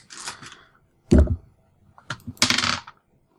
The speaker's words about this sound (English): Okay, go ahead and make a roll. Dice, dice, dice. Get out of there, die. There we go.